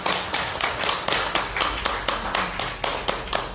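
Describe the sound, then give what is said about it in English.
An audience at a Web3 panel event applauds the speakers, many hands clapping together in a dense, steady crackle of sharp beats that holds at an even, moderate level for the whole stretch, with no voices over it. “Oh, okay, everybody, please a round of applause for our speakers before we move on to the next panel.”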